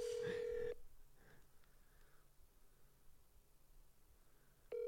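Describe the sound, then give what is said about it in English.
A phone line ringback tone purrs in the earpiece as a call to a friend goes unanswered: one steady burst, a long quiet pause, then the next ring starting. No one speaks. “Oh, he's like, he's pulling a Judy Seeberger and just not taking my phone calls.”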